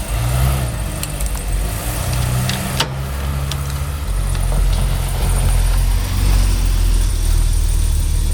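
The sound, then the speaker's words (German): A car engine idles steadily, then grows louder as the vehicle pulls away, a brief click sounding early on. No one speaks. “Also, jetzt fahr doch endlich.”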